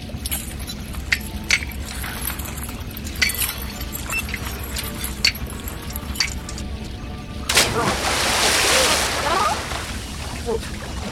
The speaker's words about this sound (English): There is an ancient ritual in sea caverns such as this. Directly below us, the tide is beginning to seep in.